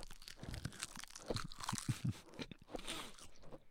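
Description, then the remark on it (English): Crunchy chewing of a salty snack, a run of irregular crackling bites and mouth sounds over a few seconds, fairly quiet and heard alone with no talking. “It's like I feel like I'm chewing paper mache right now.”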